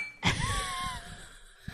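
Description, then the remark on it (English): A single bright clink of glasses in a toast, followed by a clear ringing tone that lingers and slowly fades, at a ranch house Airbnb. “Matter of fact, cheers.”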